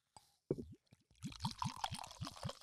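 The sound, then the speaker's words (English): Liquid glugs rhythmically out of a bottle into a glass, a steady series of gurgling pulses over a bright splashing fill, fairly loud with no talking. “let me pour in front of the”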